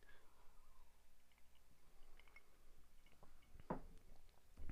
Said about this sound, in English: Today we're drinking some Wild Turkey bourbon. Cheers. I just started saying that because I wanted to take a sip.